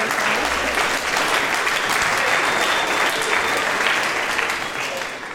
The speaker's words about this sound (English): Beautiful, beautiful. Okay, so you can see, yes, go ahead and applaud.